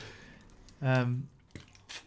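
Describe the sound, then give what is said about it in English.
A swig of water: a short drinking gulp with a brief voiced murmur, followed by a couple of soft wet swallowing clicks, heard alone. “So I'll have a swig of water.”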